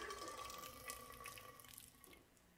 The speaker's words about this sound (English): And then the priest would raise his hand and the entire place would go silent. And he would pour out the water.